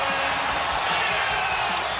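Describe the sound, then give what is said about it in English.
A large arena crowd at a Boston Celtics basketball game roars and cheers loudly and continuously after a Jason Tatum dunk, a dense wall of voices with scattered whoops rising out of it, sustained for the whole two seconds. “Jason Tatum has electrified the crowd, and the Celtics back within two.”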